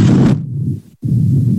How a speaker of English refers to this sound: Arms up. Okay, breathe. And then when you put your arms down, you're going to blow through your lips like this.